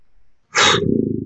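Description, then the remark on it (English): A person imitates a dog's sigh: a sudden, loud breathy puff of air that trails into a low, rumbling exhale lasting under a second, with no talking. “I love it when dogs sigh.”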